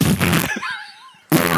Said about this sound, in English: He'd work the fart effects board. He would find the fart button first try and just never move on.